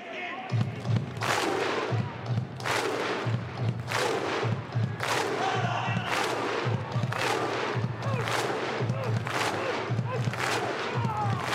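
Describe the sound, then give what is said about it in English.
A large Raiders crowd performs the old Viking chant before the game, a deep collective shout followed by a booming unison clap, repeated at a slow, steady interval of about two seconds, loud and continuous. “They are the Raiders, so it's surprising it's taken this long for the crowd to bring out the old Viking chant and clap.”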